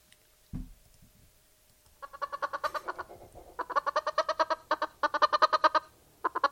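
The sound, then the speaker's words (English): Rapid, rhythmic clucking from a chicken comes in several loud bursts, each a quick string of sharp, nasal pulses, with a brief low thump just before. “I hear that chicken.”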